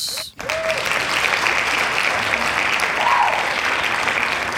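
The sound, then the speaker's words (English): Sustained applause from a crowd, a dense, steady wash of many hands clapping at once, loud and continuous, with a brief dip near the start. “Hand claps.”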